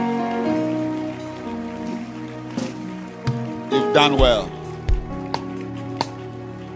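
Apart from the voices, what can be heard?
audience clapping hands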